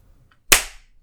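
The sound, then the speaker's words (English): A single sharp hand clap, made to sync a recording, rings out from near-silence, a loud bright crack with a short decaying tail, and no voices. “We are now doing another clap. This clap will take place at 37, which is hopefully plenty of notice.”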